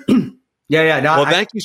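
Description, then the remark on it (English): Someone clears their throat: a short, raspy burst, a pause, then a longer voiced, rumbling grunt and a brief final catch. “I'm clearing my throat and there's a delay.”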